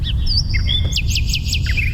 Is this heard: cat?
no